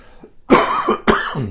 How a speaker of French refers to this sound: Pardon, je sollicite vos prières pour cette vilaine toux causée par l'herbe à poux.